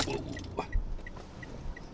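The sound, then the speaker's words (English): A big truck rumbles past, a steady low engine drone with a few rattling clanks and faint, evenly spaced high chirps over about two seconds, with no talking. “It's a big truck.”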